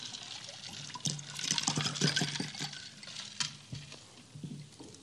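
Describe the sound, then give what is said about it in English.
Water is poured into a glass in a few splashy bursts, followed by quieter sips and gulps of drinking, with no talking. “Forgive my thirst.”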